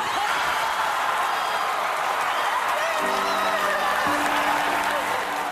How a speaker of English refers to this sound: Is that applause or is that the sound of Hollywood slapping itself on the back?